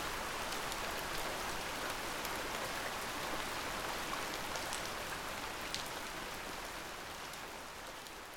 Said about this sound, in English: I love to listen to the rain.